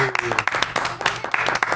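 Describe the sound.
A short burst of applause for the owner of an Indian restaurant in Glendale, from a small group, with dense, steady clapping throughout and voices briefly audible at the start.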